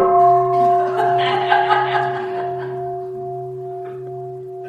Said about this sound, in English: Mind is already free. Recognize that when the bell rings.